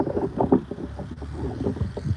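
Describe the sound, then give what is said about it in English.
Low, rumbling gusts of wind buffet a microphone outdoors, a steady muffled roar with uneven surges and no clear voices. “Hold on, because it's windy.”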